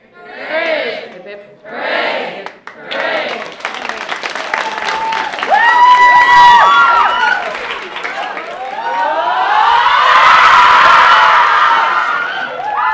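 A crowd shouts three short, loud hoorays in quick succession as three cheers at a McMahon Cup celebration, then breaks into sustained cheering, whooping and applause that swells and carries on to the end.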